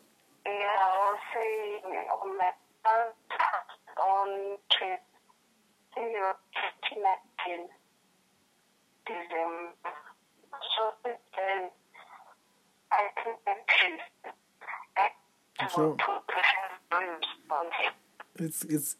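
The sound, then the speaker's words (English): A voice over a telephone line keeps breaking up because of a network problem, its narrow, tinny speech arriving in choppy, garbled bursts separated by sudden dropouts and short silences. “it's breaking. I'm breaking up.”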